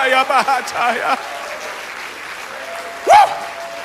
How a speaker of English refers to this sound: Oh, clap your hands, all you people, and shout unto God. Woo!